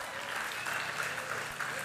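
An audience applauds steadily, a dense, even wash of many hands clapping at a fairly quiet level with no pauses or voices standing out.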